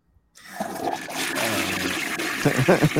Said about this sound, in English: Let me get a toilet flush. I got you.